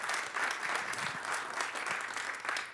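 Many people clap steadily, a dense, even wash of overlapping hand claps at moderate volume with no voices on top.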